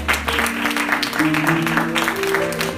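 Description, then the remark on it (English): A church audience claps hands to give the Lord glory in a dense, steady burst of applause, with sustained low keyboard or organ tones holding underneath throughout. “Now clap your hands and give the Lord glory.”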